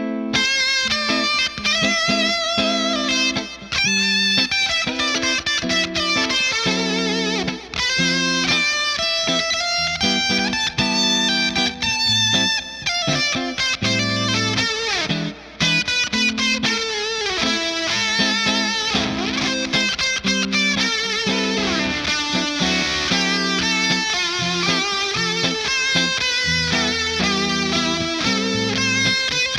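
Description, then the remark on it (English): A gritty, fuzz-distorted electric guitar plays a steady riff with a spitty, gated edge, bathed in a splashy 60s-style spring reverb from a Headstrong Little King reverb, giving a surfy, loungy 60s vibe. It's loud, with no talking. “You could really hear some of the spitty-gatedness that's happening. I'm also using the spring reverb that comes in the Little King reverb.”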